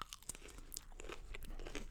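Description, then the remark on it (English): Someone crunches and chews very hot, spicy food, with a steady run of crisp, crackly bites and moist chewing noises over two seconds. No one speaks. “I've swallowed it.”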